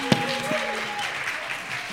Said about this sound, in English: Audience, give it up for Valerie and Kang.